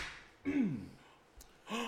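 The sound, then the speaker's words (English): A sharp, surprised gasp with a falling voiced tail, followed by a brief click and a second breathy intake near the end, fairly loud with no speech. “Gasp.”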